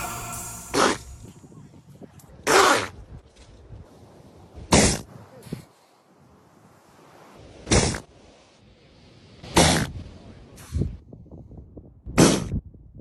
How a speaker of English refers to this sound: I sneezed. Oh, I'm not allowed to sneeze.